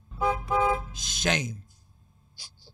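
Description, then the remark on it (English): Two short car horn honks in quick succession, fairly loud, followed by a brief, harsher falling sound that trails off into quiet. “Honk the horn, boy.”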